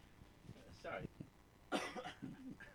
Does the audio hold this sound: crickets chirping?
no